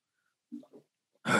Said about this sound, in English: How about a sip of coffee? Why not? Anyone listening? We're just taking a sip of coffee.